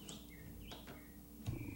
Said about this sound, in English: Is that a real bird? Yeah. I don't think they could hear it because it wasn't that loud, but... Probably not. It sounded like a bird ringtone or something. It was so perfect.